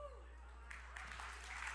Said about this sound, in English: Now, I hope you're clapping for God. Yeah, if you're clapping for God, you'd better real do it.